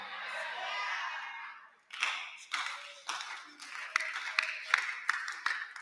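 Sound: audience clapping hands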